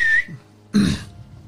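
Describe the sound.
A single short, high-pitched whistle blast from a person whistling a signal sounds clear, followed after a brief pause by a rough, breathy throat-clearing noise.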